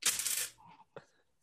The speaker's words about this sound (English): I don't want to roll this dice.